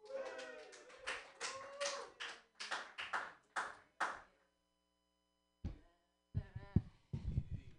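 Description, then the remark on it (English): A short burst of scattered hand clapping from a small comedy show audience follows a brief silence, preceded by a few seconds of voice-like vocal sounds. The clapping is moderately loud. “Clap for me.”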